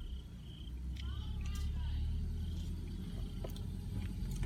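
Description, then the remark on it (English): A car engine with transmission trouble rumbles low and continuous, running roughly and unevenly throughout, with faint high chirps and brief clicks scattered above the drone. “There's a Range Rover in front of you and your car's putting around.”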